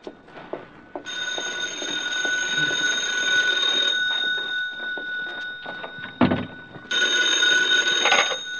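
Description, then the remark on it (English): A telephone rings in two loud, sustained bursts with a steady metallic trill, separated by a short pause and a brief thump, with no one speaking. “Well, there it is, Stella. Go to it, honey.”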